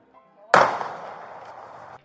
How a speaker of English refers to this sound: A sound of a gunshot filled the room.